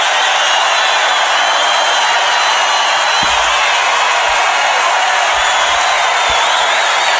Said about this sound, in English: Whoa. And this was the loudest the crowd got because of he said Nebraska.